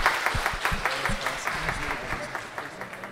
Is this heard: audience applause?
yes